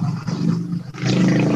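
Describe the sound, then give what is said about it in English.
A motorcycle roars down the street with a loud, low, growling engine drone that briefly dips midway, like a gear change, then surges back up and holds steady. No one speaks. “Well, yeah, the door was opened a little bit wider than it was when we first started recording, and a motorcycle just went down the street.”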